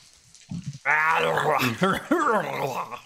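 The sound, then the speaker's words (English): A person voices a gnoll, growling low and then barking out harsh, guttural shouts in a made-up snarling language, loud for a few seconds. “The gnoll continues to growl at you and shout in these weird words.”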